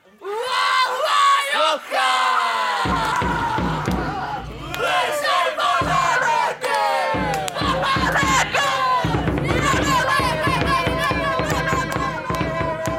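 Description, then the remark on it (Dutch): A large crowd of boys chants a song loudly and continuously, with the distorted voice of a young capo on a megaphone leading the melody over the group; sharp bangs and shouts punctuate the dense, rhythmic singing throughout. “… als kleine capo een nieuw liedje inzet op zijn megafoon”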